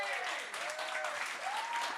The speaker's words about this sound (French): Bon, on applaudit